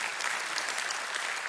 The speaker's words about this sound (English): Oh, yeah, you can clap. I appreciate that.